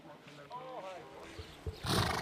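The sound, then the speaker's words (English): A polo pony gives a short, wavering whinny, followed by a loud breathy snort or rush of noise, with muffled voices faintly in the background. “They're called polo ponies because they're smaller.”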